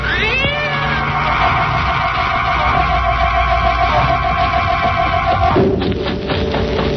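A cat lets out a long, drawn-out meow that rises at the start and holds steady for several seconds before breaking off, loud, in fog, with no talking.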